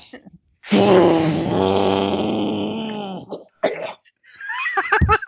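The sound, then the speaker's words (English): A loud, drawn-out theatrical groan with wavering pitch, performed as part of a chant, sinks lower, then breaks into several harsh, rasping coughs and sputters in quick succession. “That's actually part of it. The barbaric cough falls over on stage.”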